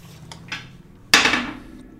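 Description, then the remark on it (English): Dice rolled onto a hard surface to roll initiative: two light clicks, then a sharp, loud clatter that rattles briefly and fades over about a second, with no voices. “That's why we're rolling initiative.”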